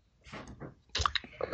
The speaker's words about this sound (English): It's a Goose IPA. Something good coming out of America. Yes. And on special offer. So marvellous. Yeah. I'm going to pour mine.